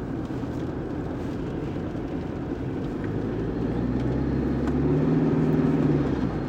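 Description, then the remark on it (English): A 2011 Toyota Prado GX diesel SUV drives along with a steady engine drone and road rumble. Midway the engine note rises and grows slightly louder as the driver floors it down a straight. No one speaks. “2011 Toyota Prado GX diesel”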